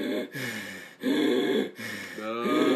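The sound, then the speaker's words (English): A voice imitates strained, wheezing gasps through a throat that had closed up, three long rasping breaths in a row with brief pauses between, loud. “But at that point, I couldn't get anything down my throat anymore because it had closed up so far that I was literally, I shit you guys not, I was breathing like this.”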